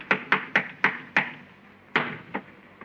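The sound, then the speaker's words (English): Footsteps thud overhead on the ceiling in a quick run of five steps, then pause before two more; the hard, slightly muffled footfalls ring out alone with no talking. “Somebody's walking on the ceiling. Listen.”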